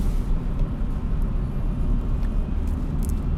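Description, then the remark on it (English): A snowplow on the road, passed by a driving car, gives a deep, steady engine and road roar with a faint high hiss and occasional brief squeaks on top, no voices. “Passing a snowplow.”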